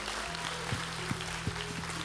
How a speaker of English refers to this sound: Come on, let's give the Lord another hand clap tonight. That was awesome.